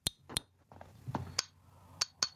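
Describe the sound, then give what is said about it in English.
A fingernail taps a glass five times, each bright, ringing clink standing alone at irregular intervals, fairly crisp against a quiet background. “I was clinking with my fingernail on the glass.”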